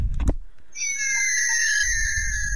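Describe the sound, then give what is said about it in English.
A button click, then an Armada Laserbeak toy robot bird's electronic screech: one shrill, steady, high-pitched tone with buzzy harmonics that holds unbroken for about two seconds over a low rumble. “I was hoping to go for the screech one.”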